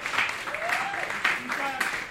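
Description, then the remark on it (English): A crowd claps steadily for about two seconds for the show's technician, a dense rattling patter, with a few voices whooping and calling out over the applause. “By the way, let's have a round of applause for our technician”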